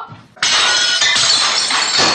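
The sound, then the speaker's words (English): A loud crash of dishes, thrown all over the place by Connie as she yells at her husband, erupts after a quiet moment, followed by a sustained, bright clatter of shattering glass and ceramic shards for about two seconds. “So she's going to yell at her husband and throw dishes all over the place.”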